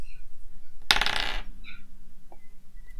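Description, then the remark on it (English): Dice rolled during a tabletop role-playing game clatter across a hard tabletop in one short, bright rattling burst, followed by a couple of faint ticks as they come to rest. Fairly loud, with no voices. “Doesn't right, I'm using a different dice.”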